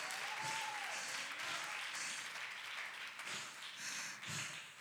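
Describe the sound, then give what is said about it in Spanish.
A crowd breaks into steady, sustained applause, a dense wash of many hands clapping at once that stays loud throughout, with a faint whistle-like tone rising briefly near the start. “Denle un fuerte aplauso a mi rey esta tarde.”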